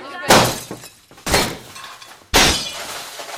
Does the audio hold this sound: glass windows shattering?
yes